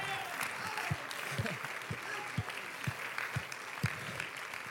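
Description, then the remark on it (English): An audience claps together in a steady, rhythmic beat, a hand clap of praise and thanksgiving to the Lord, over a dense wash of crowd noise, with sharp low thumps landing roughly every half second, maybe alongside faint voices. “If you'll believe that, give the Lord a hand clap of praise and thanksgiving.”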